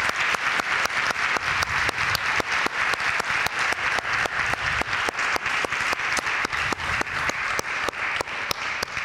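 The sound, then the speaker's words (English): A crowd applauds steadily for several seconds to honor people standing to be recognized for their service to their country, a dense wash of many hands clapping at a constant loudness, with sharper individual claps popping out of the mix. No one speaks. “Let's give these a hand of applause.”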